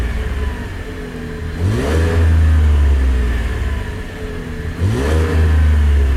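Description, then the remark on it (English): A 4-cylinder truck with its stock exhaust idles with a low rumble, then revs up twice, each rev rising sharply in pitch before settling back to a steady drone. No one speaks. “All right, so he played the stock truck, and then he played one with an S-Type.”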